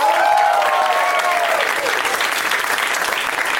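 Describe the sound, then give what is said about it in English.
A crowd claps loudly and steadily for several seconds for Ron Funches, a dense continuous patter of many hands, with a few high whistles or whoops rising over it at the start. “I think we needed to have a clap off between Bert and Ron.”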